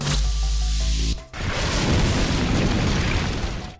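A loud explosion of a file in the matrix erupts after a second of sustained low droning tones, bursting into a broad, crackling roar that rumbles on for a few seconds before thinning out.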